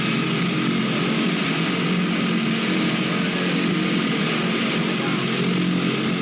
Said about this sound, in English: Look at those tiny planes. And look at the, yes, exactly. It's a small private, you know, charter plane.